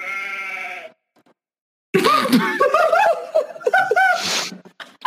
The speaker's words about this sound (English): That was the soundboard that I had open. I did not mean to make a sheep sound.